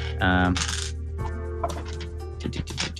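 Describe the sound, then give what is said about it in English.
Small hard dice clatter and clink together, a busy rattle as dice are rummaged through and rolled for damage in a tabletop game, with a voice briefly audible alongside the clicking. “I need my big dice here. Where am I? Oh, they're missing some.”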